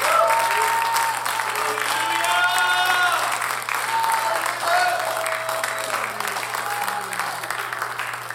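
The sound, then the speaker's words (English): A large crowd claps steadily and loudly in praise of God in the morning for the whole stretch, a dense wash of hand claps, with scattered voices calling out over the applause. “Why don't you give God a hand clap of praise this morning?”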